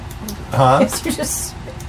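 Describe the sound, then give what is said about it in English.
A person imitates some kind of bird with their voice, making a short clucking call: a squawky, rising note followed by a few softer clicky sounds, fairly loud. “You can vaguely hear the sounds of some kind of bird.”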